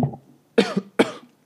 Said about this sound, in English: Keep coughing.